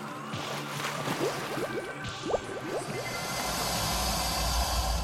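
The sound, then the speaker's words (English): Water sloshes and splashes steadily, with gurgling bubbly bursts scattered through the middle, as a person wades slowly through neck-high water carrying a companion on their shoulders. No voices. “Crystal carried her one remaining traveling companion chicken fight style through the neck-high water, splooshing and sloshing her way along.”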